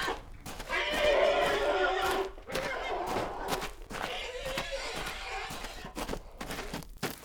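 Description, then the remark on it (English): A horse, Ruby, a cinnamon three-year-old nursing a leg, neighs loudly, a long wavering whinny that falls in pitch, followed by several seconds of rough, breathy snorting and shuffling noise. “You mind the horse?”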